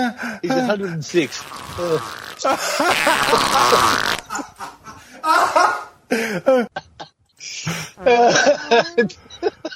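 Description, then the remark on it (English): A drawn-out, noisy fart sound blurts out in the middle, surrounded by people talking and reacting, with a few shorter bursts of noise breaking up the chatter afterward. “You were doing a really good bit, but it's just that fart sounds make me laugh.”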